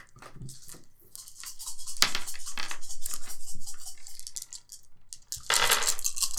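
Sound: dice being rolled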